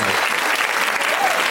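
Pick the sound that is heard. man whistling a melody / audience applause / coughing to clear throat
audience applause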